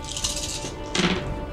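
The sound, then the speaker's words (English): A handful of seven dice clatters and tumbles across a hard surface during a game, in two bursts of sharp, rattling clicks, the second one louder and briefer, with no talking. “So there's seven dice.”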